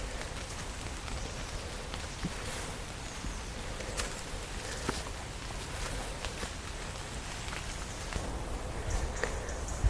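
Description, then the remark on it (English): Steady rain falls through ash, beech and hazel trees in a wood with earthen ramparts, a soft continuous hiss broken by scattered sharper drips and taps landing on leaves, with no voices. “I just stopped to listen to the rain actually coming through the trees.”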